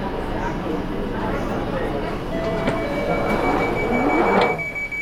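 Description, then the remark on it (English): A steady, rumbling roar of an underground train in a station, with rising mechanical whine and a brief high-pitched squeal near the end, continuous and fairly loud throughout. “Mind the gap between the train and the platform.”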